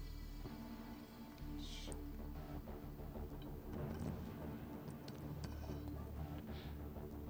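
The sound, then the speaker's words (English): Liquid poured out onto a table: a quiet, steady wash of splashing and trickling over a low hum, with a few brighter splashes and faint ticks, and no voices. “That's the sound of pouring it out.”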